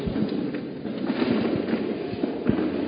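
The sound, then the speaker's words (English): Chairs being set down and arranged into place, seven chairs put in one spot, a series of irregular hollow knocks and clunks over a steady, busy background. “Put 7 chairs here. 7 chairs here.”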